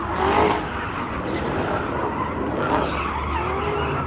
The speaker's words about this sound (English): God, I gotta be honest with you. I love that fucking exhaust sound. Holy shit.